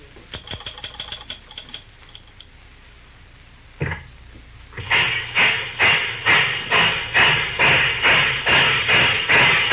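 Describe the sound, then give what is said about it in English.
Engine 1010 switching in a rail yard: light metallic ticking and a heavy thud, then loud, steady rhythmic chuffs of steam building into a regular beat, with no voices. “Yes, he's switching in the yard on the 1010. You can catch him on the engine.”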